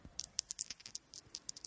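A twenty-sided die clatters across a hard surface in a quick, irregular burst of small sharp clicks that slows toward the end. Quiet, with no voices.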